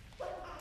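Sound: sneeze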